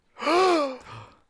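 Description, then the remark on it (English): A single exaggerated mock gasp of surprise, loud, with a rising-falling pitch, then a brief softer breathy trail-off. “Gasp.”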